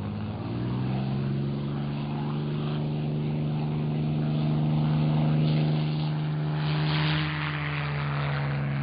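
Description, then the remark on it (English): A propeller airplane engine drones steadily in flight toward the Grand Central Airport in Glendale, a loud low hum with layered tonal harmonics and a broad rushing noise, holding constant throughout with slight swells in intensity. “it might be a bumpy ride for the first half of our trip till we get out over Arizona”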